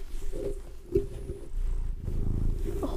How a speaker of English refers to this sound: Is he purring? Yeah.